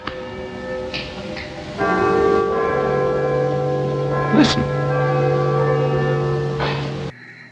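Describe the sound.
Church bells chime in the distance in layered, sustained peals that swell after a brief spoken word and hang in the air for several seconds before cutting off abruptly.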